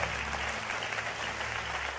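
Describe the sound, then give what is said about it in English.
A crowd claps steadily for two seconds for the worship team, a dense, even wash of many hands with no pauses and no voices on top. “Let's give a round of applause for our worship team.”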